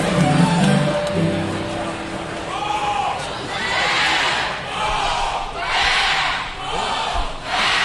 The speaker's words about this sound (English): Excited students even began a Wolfpack cheer amongst the crowd.